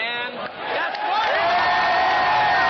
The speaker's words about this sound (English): Are the fans cheering at Rutgers Stadium? Here it goes. I hear nothing but clapping. Yeah, look at people jumping around.